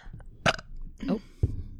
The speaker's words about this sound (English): Oh. Ugh. Wash it down with some wine. Wash the belch down. Good Lord.